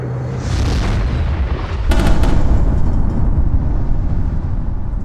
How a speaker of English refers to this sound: The resulting explosion creates a bright flash of light, blinding the pirates for a few precious moments.